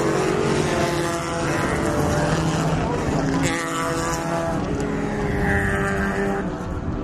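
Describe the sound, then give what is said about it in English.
Classic racing cars, including a Lotus 23, an Elva and an MGB, roar loudly at Shannonville as they accelerate out of tight turns, engine notes rising and overlapping in a continuous drone, with a faint voice somewhere beneath the noise. “They bunch up in the tight turns and then open up here.”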